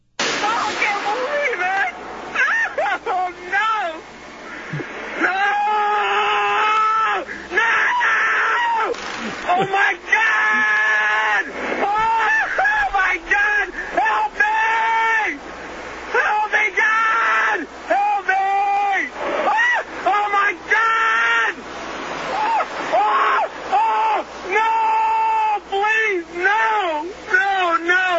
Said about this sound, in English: some guy who I'm just going to classify as a drunken redneck, sitting in the back of a police car while the cop searches his car, screaming and yelling like he's being tortured. I really wish he was being tortured. Listen to this.